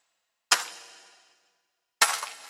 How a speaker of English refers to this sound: The mirrors. It looks like the glass is crumbling out them into one big pile.